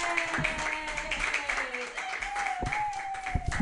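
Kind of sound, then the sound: crowd, audience clapping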